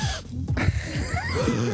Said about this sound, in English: You just pulled a Trump breathing thing.